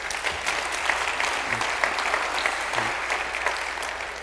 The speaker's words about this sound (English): And we're so proud of our shepherd. Yeah, you can applaud him if you like. Look at that.